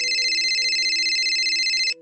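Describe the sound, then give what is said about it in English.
A phone rings at 8:56 p.m. with a loud, bright electronic trill, a rapidly warbling high tone that holds steady for about two seconds before cutting off abruptly. No voices are heard. “Chanda's phone rang.”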